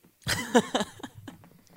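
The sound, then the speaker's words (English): Someone sips tea from a cup: a sudden, loud, breathy slurp with a brief squeaky whistle in the middle, trailing off into softer sputtering noise over about a second and a half. “Oh, that was literally me sipping tea out of my cup.”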